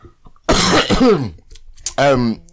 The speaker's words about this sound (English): Oh gosh, I'm bare coughing.